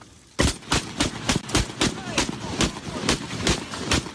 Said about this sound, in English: He can be seen firing two AK-47s into a lake while threatening.